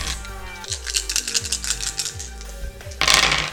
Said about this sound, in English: So I get to roll 6 dice.